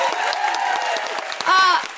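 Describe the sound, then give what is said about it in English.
A crowd at the New Normal Festival applauds Jayde Adams, Stephanie Yeboah and everyone at the festival with steady, dense clapping throughout, and a high, rising cheer or whoop rings out over it near the end. “A huge round of applause for the incredible Jayde Adams.”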